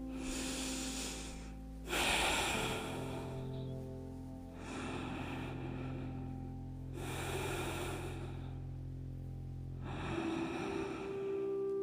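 Slow, deep breaths drawn in and let out, several long airy inhales and exhales in a steady, unhurried rhythm over a low steady hum, during a guided breathing exercise.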